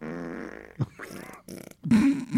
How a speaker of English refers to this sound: So this is my favorite fart sound.